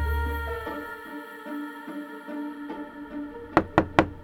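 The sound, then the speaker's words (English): Three quick, sharp knocks on a door ring out near the end, fairly loud, following a sustained background of soft tonal music. “I can't open the door right now”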